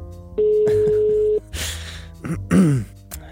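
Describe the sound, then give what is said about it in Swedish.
A single steady phone ringback tone of an outgoing call being placed again hums for about a second, clear, followed by a breathy exhale and a brief murmured vocal sound. “Nu ringer jag igen.”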